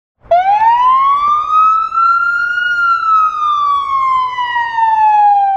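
A fire truck siren wails loudly, one long continuous tone slowly rising then gradually falling in pitch, with no voices present.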